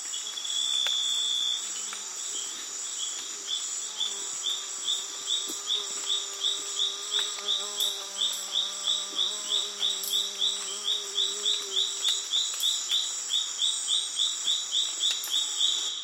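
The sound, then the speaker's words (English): A dense Amazon rainforest chorus of insects: steady high buzzing drones layered with rapid, rhythmic pulsing chirps, while occasional bird calls and warbling tones rise through the middle. Loud and continuous, with no talking. “And traveling deep into the Amazon rainforest, I had the opportunity to take a break from all that and really focus on the very intense sounds of the natural world.”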